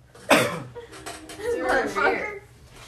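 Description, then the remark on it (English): A sharp cough bursts out near the start, followed by rough, voiced throaty sounds that trail off over the next couple of seconds. “I was still coughing when I took those hits, though.”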